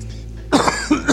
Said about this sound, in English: apparently I'm becoming your character now and coughing.